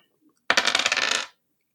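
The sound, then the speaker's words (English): Two dice are rolled on a table, a quick, bright clatter rattling in rapid little ticks for under a second before settling into silence, landing on a 3 and a 5. “So that gives you two dice.”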